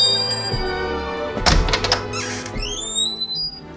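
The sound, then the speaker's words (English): A heavy wooden door thunks shut with a dull, low thud and a brief rattle, followed by a few rising, squeaky whines over a steady tonal hum. “And the door which is never opened or closed.”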